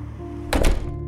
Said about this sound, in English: That's exactly what his mum realizes when she opens the door.